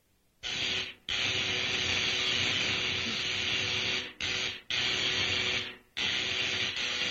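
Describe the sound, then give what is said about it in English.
An electrical generator is turned on after dials are adjusted, roaring into a loud, steady hum overlaid with harsh hissing buzz, cutting out abruptly a few times before surging back on. No one speaks. “Now, I adjust these dials, turn on the electrical generator, and...”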